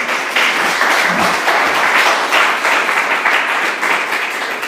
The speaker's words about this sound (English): Do you want to give them a little round of applause?